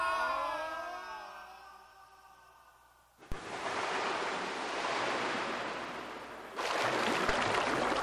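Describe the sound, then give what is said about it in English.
Sliding, descending whistling tones fall for a few seconds as a winged sky galleon topples from its perch and falls. A sudden loud crash into the sea then gives way to heavy, churning splashing and surf, swelling again near the end. “Like a giant crippled bird, the winged galleon falls, flapping downward.”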